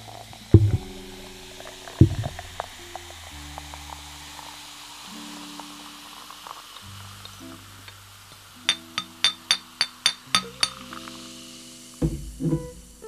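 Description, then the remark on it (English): Liquid glugs from a bottle with glitter at the bottom into a glass, with low gurgling tones shifting in pitch and a quick run of about eight rhythmic glug pulses near the end, fairly quiet throughout. “Give it a nice pour. Ooh, I can hear that.”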